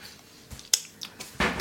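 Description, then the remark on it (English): Two bottles of Prosecco being set into a fridge: a few sharp glassy clinks and knocks, spaced irregularly, ending in a slightly longer rattling scrape, with no talking over them. “She's putting two bottles in the fridge.”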